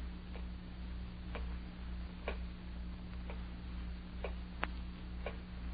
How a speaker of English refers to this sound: Terrible clock. Ticking. Yeah, I know. I've been sitting here listening to it. I can't stand it anymore. I'll stop it.